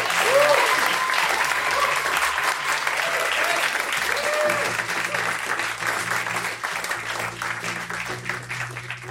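Sustained audience applause, a dense wash of many hands clapping at steady loudness for about nine seconds, with a few faint voices and whoops mixed in and a low hum underneath.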